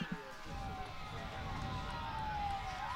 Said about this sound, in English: So you hear the fire trucks nearby.